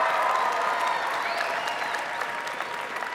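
An audience applauds steadily, a dense wash of many hands clapping that holds at a fairly even loudness for about three seconds and tapers only slightly toward the end.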